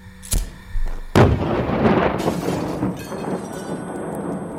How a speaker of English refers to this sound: At 8:25 a.m., an explosion ripped through Frenchall Farm as the little caravan erupted in a fireball of tangled metal, buckled frames, and flying glass shards, as beyond its flaming curtains, smoke billowed.